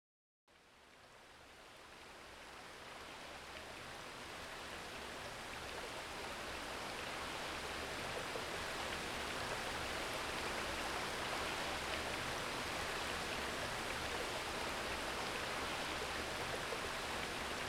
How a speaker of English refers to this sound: Then the rain burst down in an angry gush.